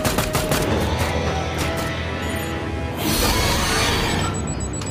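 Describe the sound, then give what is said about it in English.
Rapid bursts of machine gun fire crackle in a dense, loud barrage, with sharp repeated cracks at first giving way to a continuous roar of heavy gunfire. “Open fire!”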